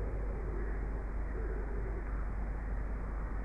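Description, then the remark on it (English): Pigeons coo softly, low murmuring calls drifting over a steady outdoor rumble, with rooks faintly calling in the background. “Listening to our internal voices, just as we listen to the rooks and the pigeons.”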